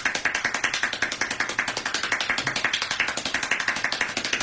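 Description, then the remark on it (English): Extremely fast hand clapping by one man in a steady, relentless stream of sharp claps, about 14 claps per second, keeping an even rhythm and loudness throughout with no voices. “I think we'll go for 14 claps per second.”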